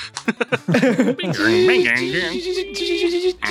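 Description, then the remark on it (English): A man's voice imitates a fax modem: a few quick choppy syllables, then a long steady warbling tone with a hissy, screeching edge that carries on for about three seconds. “Put in a fax noise here.”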